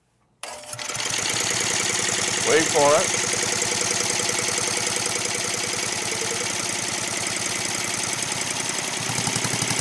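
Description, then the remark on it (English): A small engine, first turned over by a motor and then run on hydrogen, starts up and runs steadily for the whole stretch, a loud, fast, even chatter of firing pulses; a man speaks a few words briefly over it. “So what I'm gonna do, when it starts motoring with the motor, I'm gonna turn on the hydrogen, see if you can hear a change to the sound when it starts to burn hydrogen, have the little explosions inside.”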